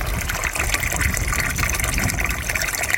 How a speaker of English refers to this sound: See, the water's running away, the pump's running. It's a float switch, which is wired into the solar panel, I gather. Yes, it's just a float switch on a flexible pipe, and it's quite reliable, actually, yeah.